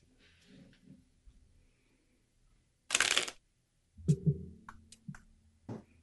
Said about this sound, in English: Shuffle those cards. Like, they only work if I use them randomly.